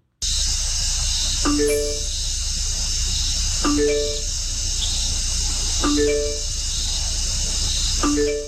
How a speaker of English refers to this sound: The sounds began as the mating call of the bat's favorite prey, a frog, and then gradually were mixed in and changed to a ringtone.